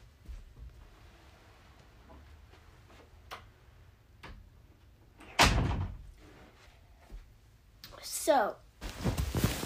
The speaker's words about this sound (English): I'm going to go close the door from my room. I'm recording in my room.